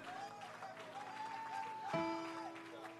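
An audience claps hands in praise of the Lord, a dense, steady wash of applause, while sustained organ chords hold underneath and shift to a lower note near the end.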